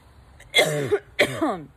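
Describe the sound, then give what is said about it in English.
Two harsh coughs after smoking, about half a second apart, each a sharp burst that trails off into a raspy, throaty tail, with no talking around them. “You always got to get the good cough in there.”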